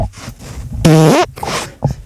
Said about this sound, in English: Wait, was that Uranus? Well, if I can't fart on the show. Oh my God. So yeah, that was a genuine fart.